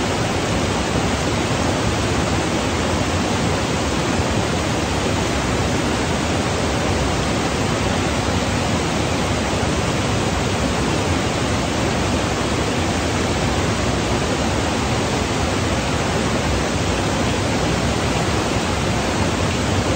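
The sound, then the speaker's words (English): Steady, dense rushing of river water flowing continuously, a broad even roar with no pauses or voices, sounding almost like constant noise. “Watch or listen to the river run.”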